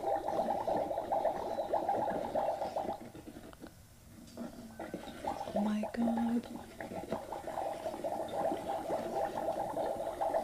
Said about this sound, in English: I wonder what it looks like in there. I'm curious. Oh. It's like a bath bomb fizzing in this water. Oh, wow.